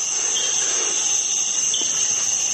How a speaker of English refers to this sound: But what I can do is try the bow and drill method. And I've got a bit of power in it, so it's really nice and tight.